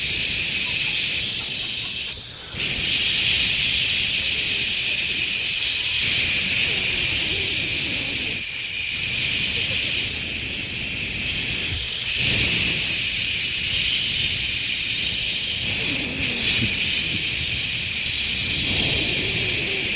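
A steady, loud wash of ocean-wave sound effect played from a soundboard fills the whole stretch, a hissing roar with bright high-end spray and only brief dips in intensity, with no voices over it.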